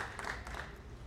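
An audience applauds the work on a map design that is going to be painted on a wall: a dense, steady patter of many hands clapping at moderate volume throughout the short clip, with no voices speaking over it.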